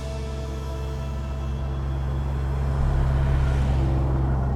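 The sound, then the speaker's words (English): A car engine drones steadily, swelling a little louder partway through as it pulls away when a traffic light changes and moves with the flow of traffic, with a faint background wash of traffic and no voices. “Griffin started forward, now moving with the flow of traffic.”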